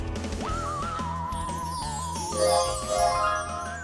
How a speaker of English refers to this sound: Yes, I liked it. It was like a meditation before I start the show. The bells? You have to hear the bells?